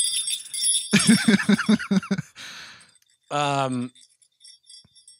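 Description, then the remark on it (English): A Polar Express jingle bell shakes with a bright, high metallic shimmer that rings on in the background while voices break in with rhythmic laughing sounds and a short vocal burst. “So I have this jingle bell here.”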